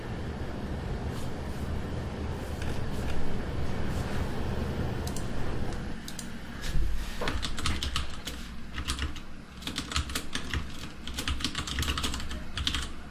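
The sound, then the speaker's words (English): Rapid, irregular typing on a computer keyboard, the clicks growing denser and sharper partway through, over a steady low background rumble. No voices are heard. “I can be sitting, you know, sweating at my desk, slaving over my hot keyboard.”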